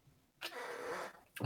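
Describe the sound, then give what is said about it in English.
A breathy cough with a drawn-out rasp, followed by a shorter second cough about a second later. No one speaks. “Still going to cough. Sorry.”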